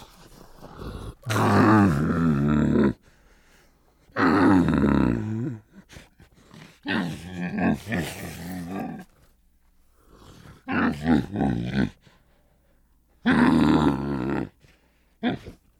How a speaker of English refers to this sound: I would add that we did a great deal of recordings with camels because camels are an incredibly bizarre sounding and vocal animal.